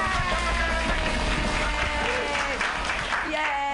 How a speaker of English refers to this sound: Everybody clap.